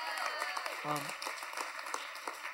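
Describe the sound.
A church audience breaks into steady, dense applause, giving Jesus a clap, many hands clapping together in a continuous wash of sound, with a brief voice rising over it partway through.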